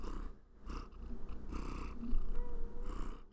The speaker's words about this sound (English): At least do something cute like meow into the microphone. This is an audio medium. Nothing. Ugh. Here. Can you purr into the microphone?